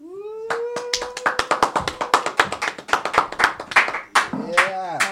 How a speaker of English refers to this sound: Clap it up.